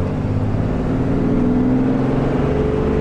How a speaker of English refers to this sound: If you guys can hear the truck working, but it's kind of fun to drive a truck this big.